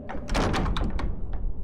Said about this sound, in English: Once they'd closed the doors, the taller imp crossed its forearms and gave Zorkek an annoyed look.